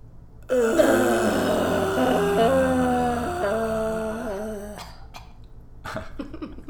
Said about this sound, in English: Never had a cough at the end before. I like that. It was a sweet little cough.